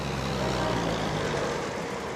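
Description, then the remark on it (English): A classic American car from the 1940s or 1950s idles on an island, a steady low rumble with a rough, throaty hum that holds even throughout, with no voices. “Everywhere on the island are classic cars, mainly American models from the 1940s and 1950s, whose odometers have rolled over many, many times.”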